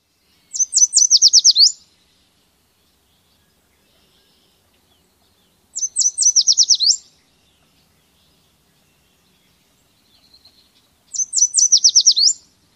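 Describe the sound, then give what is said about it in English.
A yellow warbler sings its bright, sweet mate attraction song three times, each burst a quick run of clear whistled notes rising to an accented end, spaced by a few seconds of quiet, alone. “The yellow warbler's mate attraction song, often heard as "Sweet, sweet, sweet, I'm so sweet,"”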